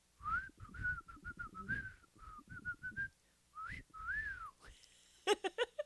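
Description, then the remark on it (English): Someone whistles the Irish Spring soap commercial jingle, a run of quick bright notes broken by a few longer sliding ones, then it stops and a few short vocal bursts follow. “I don't remember a whistle. It used to go...”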